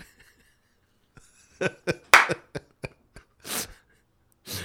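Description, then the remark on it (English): A series of sharp, hacking coughs in irregular bursts, some short and clipped, a couple longer and rasping, with no talking. “He shoves a Snickers bar up there, and then he coughs out the wrapper.”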